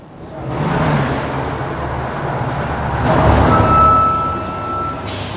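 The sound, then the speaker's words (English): A heavy number 7 city bus pulls away, its engine rumbling louder as it accelerates and a rising mechanical whine cutting through the steady roar of traffic. “Didn't you say you were waiting for number 7 bus? There'll be another one along shortly.”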